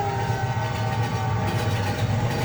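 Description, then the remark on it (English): A train rumbles steadily, a continuous low mechanical roar with faint humming tones layered over it, filling the short stretch with no voices. “Should get a real train sound in there.”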